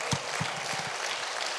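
A crowd applauds steadily for a man coming up to give a testimony, a dense wash of many hands clapping at an even level, with a few louder individual claps standing out near the start.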